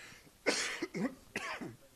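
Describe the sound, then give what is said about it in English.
A run of three harsh coughs in quick succession from a person who has had a cough for 20 years, each a raspy burst with a brief throaty tail, and no talking in between. “I've got a cough.”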